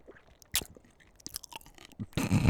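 Wet crunching from someone biting into a pickle: a few sharp crisp bites spaced apart, ending in a louder, longer burst of chewing. No one speaks.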